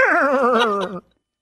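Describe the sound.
A man's voice unintentionally imitates a horse's whinny: one loud, quavering cry, about a second long, with a warbling pitch that slides steadily downward before cutting off into silence.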